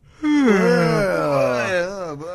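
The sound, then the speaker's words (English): A drawn-out, exaggerated yawn from one person, loud: a long voiced groan that slides up, then gradually falls and trails off over about two seconds, with no talking. “Yawn and stretch.”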